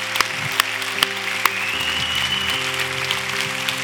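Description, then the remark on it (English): A church audience applauds people coming down to the altar in a steady wash of clapping, with a few sharper, louder claps standing out early on, while sustained keyboard chords hold underneath. “Let's give them a hand. Come on now.”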